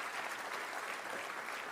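Steady applause from an audience, a dense wash of many hands clapping at once, sustained evenly at moderate loudness throughout with no voices breaking through, for a participant who gave a correct answer.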